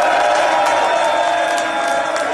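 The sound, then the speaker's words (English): A dense, loud wash of crowd noise with cheering and scattered clapping, steady throughout, as the Philadelphia 76ers team applauds and cheers Joel Embiid being announced as the 2023 MVP. “So his whole team is applauding, going nuts.”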